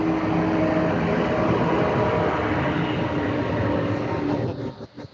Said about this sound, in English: I'll wait till the truck goes by.